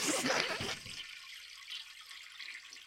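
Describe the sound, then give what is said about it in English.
A toilet flushes with a loud whoosh of rushing water that quickly drops to a steady, softer hiss of water refilling. No one speaks. “No, I was looking up a toilet flushing sound.”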